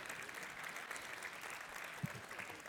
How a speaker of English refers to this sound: Some of you are clapping